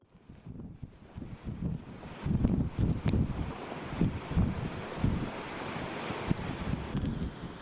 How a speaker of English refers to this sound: Hurricane Laura hit Louisiana with 150 mile per hour winds this morning, the strongest storm seen in the US for more than a century.